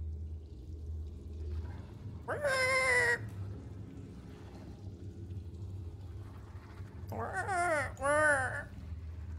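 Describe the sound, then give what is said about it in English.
A person imitates a pig's snorting in two short, nasal, wavering bursts a few seconds apart, loud, over a steady low rumble. “He snorts inquisitively.”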